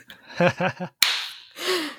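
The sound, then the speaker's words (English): A single sharp slap with a sheet of math homework cracks out after a few short voiced sounds, followed by a brief breathy rush of noise with a faint vocal tone. “Like your mother slaps you with your math homework.”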